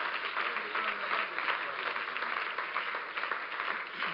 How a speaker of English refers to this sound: Will you clap your hands to the Lord